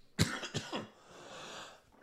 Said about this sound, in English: I'm so sorry about coughing in your ear. I'm so sorry.